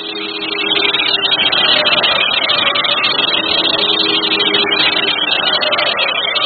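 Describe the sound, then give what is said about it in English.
A car engine runs steadily and loudly, rising at the start as the vehicle pulls away, with a dense, rough high-pitched hiss layered over the rumble throughout. No one speaks. “She's getting into a car. Let's go.”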